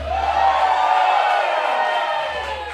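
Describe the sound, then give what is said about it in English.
A live audience at the North Door in Austin, Texas claps and cheers loudly and steadily for a few seconds after being greeted with a shouted "What's up, shitheads?", a dense wash of applause and shouting voices that tapers slightly at the end. “I mean, can you ask for a better thing in life where you could scream, "What's up, shitheads," at strangers and they clap?”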